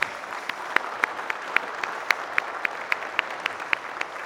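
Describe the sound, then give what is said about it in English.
A church audience at the 10:30 service applauds steadily, a dense wash of many hands with sharper individual claps popping out in a fairly regular rhythm, moderately loud and sustained throughout, with no voices. “See, we can't clap at 8:30 because we don't clap, but 10:30 we can go berserk.”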